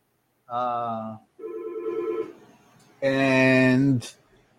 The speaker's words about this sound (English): Oh, another phone call.